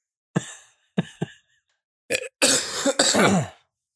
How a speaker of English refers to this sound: We'll just end the episode with just both of us coughing.